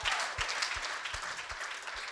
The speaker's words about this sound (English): This is what sound check is like, by the way. Give him a big clap.